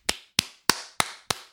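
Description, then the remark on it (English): Five sharp, loud slaps of a foot against bare skin, evenly paced about a third of a second apart, each a crisp smack with a brief fleshy decay and no voices. “That's my foot.”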